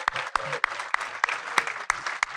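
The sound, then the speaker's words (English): An audience at a 2023 wrap party hosted by Regal Cinemas applauds for Regal Cinemas, a steady wash of clapping with one loud pair of hands striking in an even rhythm over the rest of the crowd. “Round of applause for Regal Cinemas.”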